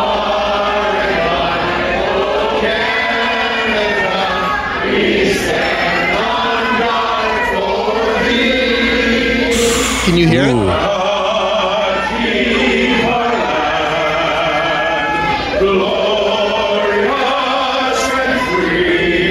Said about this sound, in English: But there's somebody singing along in the back. I'm singing, too, and I think in spots you can hear me. But there's somebody singing along, and they're so off-key.